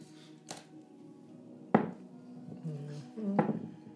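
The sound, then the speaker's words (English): Dice clatter in three short, sharp clacks spread across a few seconds, the middle one loudest, over a low murmur of voices and steady background hum. “Your dice rolling. There shouldn't be any dice rolling.”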